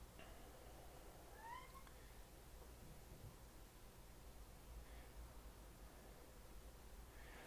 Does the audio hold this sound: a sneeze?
no